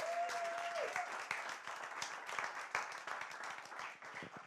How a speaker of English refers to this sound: So please, round of applause for Portia Clarke.